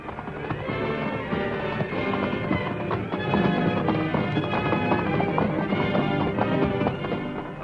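Horse hooves clatter steadily over a rocky mountain trail above a 1,000-foot drop, strewn with shale and loose boulders from landslides, a dense run of sharp clip-clop hits with scraping stones, continuous and fairly loud with no voices.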